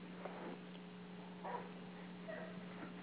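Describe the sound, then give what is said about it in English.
A female dog barks a few times in short, irregular bursts, fairly faint over a steady low electrical hum, with no one talking. “We have a dog barking here who must have missed her appointment.”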